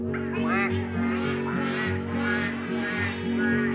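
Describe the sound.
Duck quacking in a children's song, a series of nasal quacks, likely a voice imitating the duck, repeated over steady sustained instrumental accompaniment at a moderate, even loudness.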